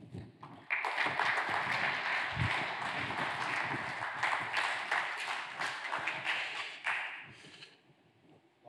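An audience bursts into steady applause welcoming a guest to the stage, many hands clapping in a dense, crackling wash that holds strong for several seconds before tapering off at the end.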